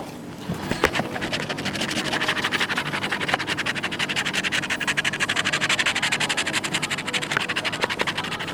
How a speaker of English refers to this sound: Scratch on a scratch card, scratch on a scratch card.